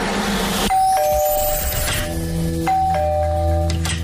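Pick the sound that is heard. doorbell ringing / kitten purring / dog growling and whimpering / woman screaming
doorbell ringing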